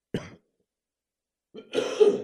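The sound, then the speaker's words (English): A short cough is followed, after a brief pause, by a longer, rougher bout of throat clearing, both fairly loud with no talking. “Sorry about the cough.”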